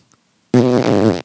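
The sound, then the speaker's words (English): A single loud, real fart from a man, with a buzzy, rasping tone, lasting under a second and sustained evenly before cutting off abruptly. No one is talking during it. “And then he actually farted.”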